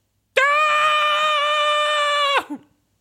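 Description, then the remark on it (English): A woman lets out one loud, high-pitched scream of fright, held steady for about two seconds before cutting off sharply into a brief breathy gasp. No other sounds accompany it. “And so … looks up, and there's this giant Brendan Fraser flying at her caravan from the sky. And she starts to scream.”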